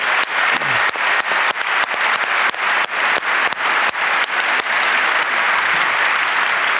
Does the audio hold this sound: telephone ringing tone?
no